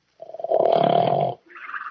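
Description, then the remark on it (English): A dog snores in its sleep in a den: one long, loud rumbling snore, followed by a softer, breathy exhale. “Oh, darn it. The dog's asleep. Wake up, doggy. Wake up.”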